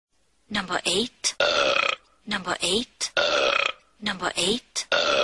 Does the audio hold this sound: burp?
yes